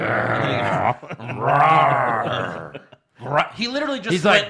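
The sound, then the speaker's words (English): A man imitates a monster growl: three drawn-out, strained vocal bursts, loud, with a brief silent pause before the last, rough and warbling. “He literally just went, growl. Growl. Rest in peace, growl. Insert monster sound here.”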